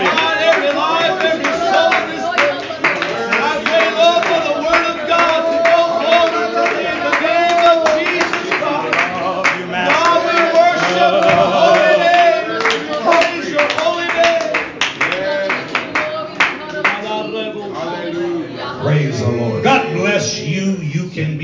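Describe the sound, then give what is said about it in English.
An audience claps hard and steadily while voices cheer and shout, with the loud, dense applause sustained for the whole stretch and easing slightly near the end. “Lift your voices. Let me hear you one more time. Loud, loud, loud.”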